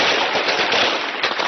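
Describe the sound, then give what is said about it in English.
Rapid, sustained gunfire in the city of Wad Madani, Sudan, as protesters scatter for safety: shots crackle through the whole stretch, a dense burst running together like automatic fire, loud and harsh with no voices. “Gunfire is heard as protesters scatter for safety in the city of Wad Madani.”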